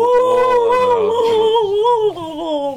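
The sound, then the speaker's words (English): A person imitates a turkey call with a loud, sustained, warbling voiced tone whose pitch wavers and dips for about three seconds, with no other talking. “Why are you turkey calling me?”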